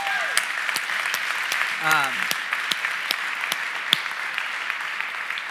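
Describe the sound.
Steady applause from a crowd fills the whole stretch, dense overlapping claps with a few sharper individual claps standing out, and a brief voice rising through the middle.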